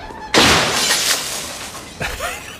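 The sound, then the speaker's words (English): A man slams his office door, number 306, hard and all its glass shatters at once, a loud bright crash followed by scattered tinkling shards and a second smaller burst of breaking glass near the end. “And he just slammed the door and all the glass shattered.”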